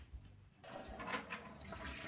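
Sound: toilet flushing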